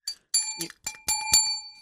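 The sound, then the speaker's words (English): A bright, small bell dings several times in quick succession, each strike leaving a sustained metallic ring that overlaps the next, fairly loud. “It's the little things I miss about being in that state already. And one of them is hearing that bell with my own ears.”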